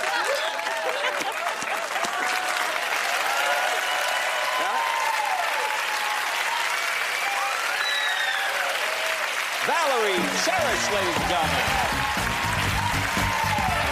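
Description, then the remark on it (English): Sustained, loud applause from a large studio audience on Jay Leno's show, who hold barf bags printed with a guest's face, runs unbroken throughout, with scattered cheering voices rising above the clapping and a lower, fuller sound joining in toward the end. “When she is like at the end of the season, when she's fully ready to quit the show and she goes on Jay Leno and they start applauding her with barf bags with her face on them.”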